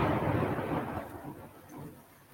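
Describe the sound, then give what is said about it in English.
A deep, broad rumble of thunder during a lightning storm rolls in loudly at first, then slowly fades into a softer, muffled growl with a faint windy hiss behind it. No one speaks. “I'm in a lightning storm.”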